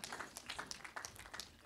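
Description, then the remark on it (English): A light, scattered patter of applause: a few people clapping unevenly, with quick overlapping claps that stay fairly soft and never build into a full ovation. “A little smattering of claps.”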